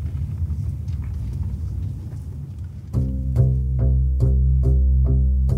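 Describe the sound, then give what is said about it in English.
A low, steady rumble fills the inside of a moving car, then music with steady, evenly spaced beats and sustained tones comes in over the road noise. “We drive.”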